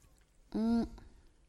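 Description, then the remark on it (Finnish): One brief, loud slurping sip of hot water, lasting about a third of a second with a humming, tonal edge, surrounded by near silence. “Voiko tässä muuten tälleen hörpää kesken voi.”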